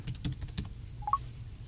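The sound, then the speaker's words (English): Several quick taps on a Bluetooth keyboard in an irregular burst, typing a passcode to unlock an iOS phone, followed by a couple of short, soft electronic beeps. No one speaks. “And I can type in the password code on my keyboard.”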